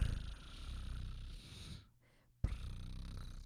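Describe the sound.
A person mimics a cat's purr with a steady rumbling vibration that breaks off briefly, then resumes just as strongly.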